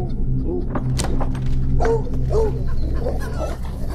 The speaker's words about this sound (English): Stop it, Baxter, damn dog!